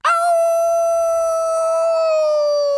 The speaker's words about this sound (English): However, just then, an angry howling sound suddenly came from outside the door.